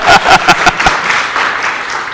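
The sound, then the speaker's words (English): A crowd applauds to celebrate a couple's 70th wedding anniversary, starting with a few sharp, loud claps that quickly blend into a steady, dense wash of clapping from many hands, holding at a moderate level throughout. “They've got some of their, applaud, 70 years.”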